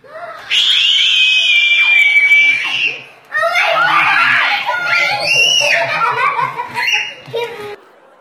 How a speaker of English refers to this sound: I'm pretty confident that some of those squeals were only heard by that dog.